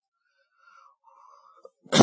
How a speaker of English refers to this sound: Boy, I'm sorry, I still have that cough. Give me just a second.